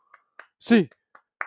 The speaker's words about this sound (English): Get your hands in the air. Eight clap time, baby. And 1, 2, 3, 4, 5, 6, 7, 8.